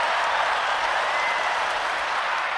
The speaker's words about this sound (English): Had to give her all the props, you know what I'm saying? Round of applause.